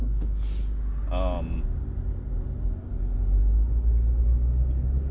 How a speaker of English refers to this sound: Sorry, I'm stuck behind a recycling truck.